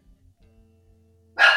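A single sharp, loud bark from Cody, one of several dogs barking that night, bursts in at the very end after a stretch of quiet low hum with faint thumps; the dogs are barking at cars driving around outside.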